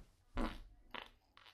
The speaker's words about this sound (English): Did you hear that? Oh, I did. Did you hear it? It was a big fart.